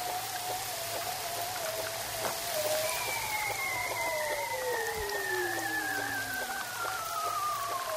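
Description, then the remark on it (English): Male bearded seals singing underwater in the Arctic Ocean, hanging vertically with heads down below the sea ice: long, wavering trills that glide slowly downward, several overlapping, over a constant crackling, rain-like hiss. No one speaks. “And those male bearded seals are hanging vertically in the water with their heads down, singing in the darkness below the sea ice to retain their harem of females.”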